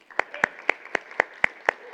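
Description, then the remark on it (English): Congregation applause at a Sunday service at Hope Church comes through as a steady beat of about eight sharp, evenly spaced claps, crisp and moderately loud, with no talking over them. “Even if it's you, clap for yourself.”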